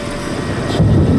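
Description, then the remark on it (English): A low, rolling rumble of thunder, steady at first and then swelling louder in its last half-second, with a broad windy hiss above it and no voices. “Another rumble of thunder, and he was gone.”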